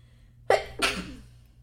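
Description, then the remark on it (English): A single sharp, fairly loud sneeze, with a quick inhaled catch followed by a forceful burst that trails off, alone with no talking. “I'm gonna sneeze again, I'm sorry.”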